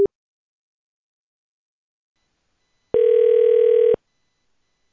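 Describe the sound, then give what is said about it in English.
A steady electronic telephone tone sounds once for about a second after a stretch of silence, with brief clips of the same tone at the very start and end, clear; it is the line tone heard on a cell phone call while on hold. “Thanks for holding. We'll be...”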